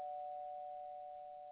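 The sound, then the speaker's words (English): A doorbell rings, signalling someone at the door, as one steady, unbroken electronic tone at a mid pitch, holding evenly for about a second and a half with no one talking. “Hold on. We got somebody at the door, gentlemen.”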